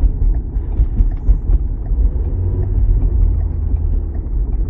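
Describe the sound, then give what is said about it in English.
A steady low rumble of a car driving at night in heavy traffic, with road and engine noise filling the lows and a faint wind-like hiss, continuous and fairly loud throughout with no one speaking. “There's a lot of cars out tonight.”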